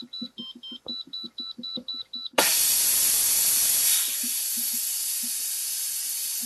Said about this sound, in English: It starts off with the coffee pot percolating, and then the oatmeal is ready sound chimes in. I cook it in a pot that's something like an Instapot, which plays a little tune when the food is ready.